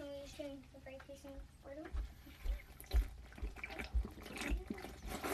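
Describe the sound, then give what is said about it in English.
Water runs from a tap in a steady splashing stream, with a few soft thuds and clunks as a glass is filled for a drink, after a brief high squeaky tone at the start. “Hold on. I got a Trump of water.”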